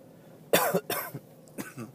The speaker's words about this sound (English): You're gonna have to forgive me. You got a little bit of a cold. So there's going to be some sniffles and some coughs in this this here episode.